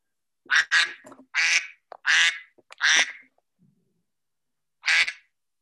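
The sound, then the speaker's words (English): A phone ringtone of loud, harsh quacking bursts: about five rapid duck-like calls in the first three seconds, a pause, then one more quack. “I've got a phone.”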